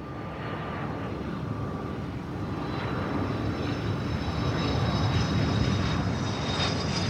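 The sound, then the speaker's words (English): A jet airplane in flight from JFK to LA: a steady, broad engine roar with thin high whining tones over it, swelling slightly louder over about seven seconds. No one speaks. “On day 4 of the caper, Joel and Harry flew without incident from JFK to LA.”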